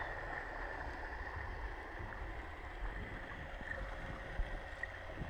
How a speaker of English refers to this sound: So for one, I could hear what I think or I imagined were boats rocking above, and then motorboats. And it sounded like airplanes almost to me.